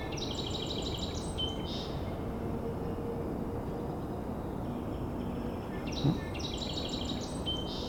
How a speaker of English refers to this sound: It's late March though. It's still migrating. Yeah, this song sparrow is very songful right now.